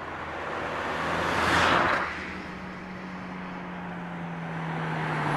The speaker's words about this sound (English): What's that car? What car? They're driving a little bit too fast. Do you think it's them?